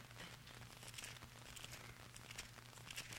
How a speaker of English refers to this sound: James 1? Let me hear your pages turning.